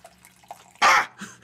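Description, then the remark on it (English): A brief, loud gush of warm water splashes into a mason jar, a quick pour lasting a moment, followed by a faint trickle and a few soft drips. “Warm water, dude. A little bit of H2O.”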